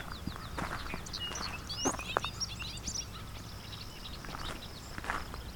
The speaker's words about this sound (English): So I'm along a hydro corridor near Westover, Ontario. And I'm hearing both clay-colored sparrow